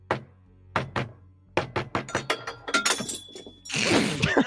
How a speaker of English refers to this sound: And I bang hard on the door. This time I actually bang really hard because I've learned my lesson, and this is, you know, knock number 54 with right. the variation on the rhythm.